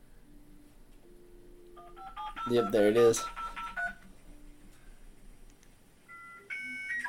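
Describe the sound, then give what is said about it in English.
A computer's dial-up modem connects to the internet over the phone line: a run of dialing tones, then a loud burst of screeching, hissy handshake noise, followed by steady electronic beeps. A voice speaks briefly. “That's the dial-up noise, yep.”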